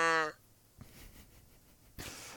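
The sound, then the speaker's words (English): A person briefly imitates a cow's moo, one loud, clipped voiced note right at the start, followed by near-silence with a soft knock and a short rustle of noise. “I'm ready to be mooed out.”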